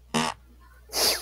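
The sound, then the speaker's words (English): A short, buzzy fart sound with a low rasping tone, followed after a brief pause by a second, hissier burst of air. Both are fairly loud, and no one speaks. “Fart.”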